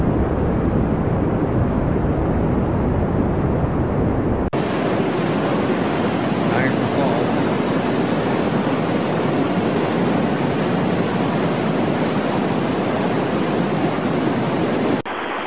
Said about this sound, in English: This one here shows the cosmic background noise.